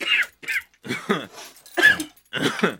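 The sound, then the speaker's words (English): A loud coughing fit: a run of about five or six harsh, raspy coughs in quick bursts with short gasping pauses between them, and no talking. “I'm gonna cough.”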